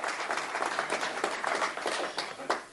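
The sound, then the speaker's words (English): An audience applauds steadily for a few seconds for people called up to the front, a dense, even wash of many hands clapping at once with no voices standing out above it. “Let's give them all a clap again.”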